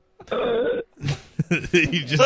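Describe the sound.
A man calling in to a radio show lets out a long, loud, drawn-out burp that rumbles for about half a second, followed by a brief gap and then indistinct talking voices.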